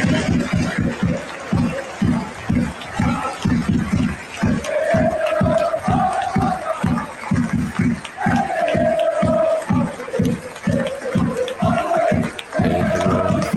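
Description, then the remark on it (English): A large stadium crowd in the fan section chants in unison before a game over steady, rhythmic clapping that keeps a regular beat throughout, the many voices blending into a loud, continuous roar. “And they were just doing this nonstop chant before the game started.”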